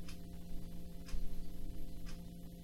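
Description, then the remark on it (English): A clock ticks steadily at about one tick per second, each tick a soft, crisp click over a low, constant electrical hum, with no voices present. “I love how there's a ticking clock.”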